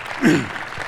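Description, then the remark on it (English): A crowd claps steadily in a dense, noisy wash of applause for the Steelers and the Rooneys for hosting the meeting, with a brief vocal whoop or cheer rising early on; moderately loud throughout the short burst. “I think they deserve a round of applause for that.”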